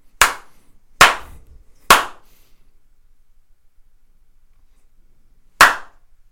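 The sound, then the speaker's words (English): Three sharp, loud hand slaps land in a steady rhythm about a second apart, followed by a long silence and then one crisp finger snap on its own. “That was a three slaps.”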